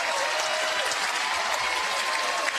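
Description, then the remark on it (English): A stadium crowd at an Alabama game rises to its feet, cheering and clapping in support of the batter Haney in a steady, dense wash of noise that holds at an even loudness for the whole stretch, with no voices standing out. “Crowd to their feet supporting Haney.”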